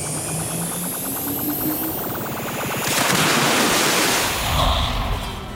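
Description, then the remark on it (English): A rhythmic mechanical whirring gives way to a loud, steady rush of water pouring back into a pool as a robot puts the water back, continuing for a few seconds. “Okay, Robozuki, there's the pool. Go ahead and put the water back.”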